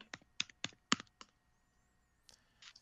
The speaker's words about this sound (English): Oops, someone's typing away.